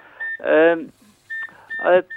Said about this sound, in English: I'm trying to find my handheld. Oh, yeah. That's what the beeping is.